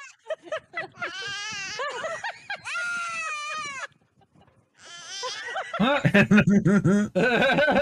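A goat bleats several times in loud, wavering, nasal cries with a brief pause in the middle, then a denser, choppier burst of bleating toward the end.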